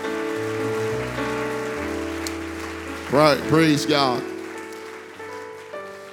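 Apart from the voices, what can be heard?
audience clapping hands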